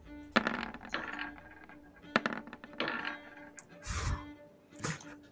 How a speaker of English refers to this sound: That extra dice roll comes in. I'm just like, you're so lucky. Two ones.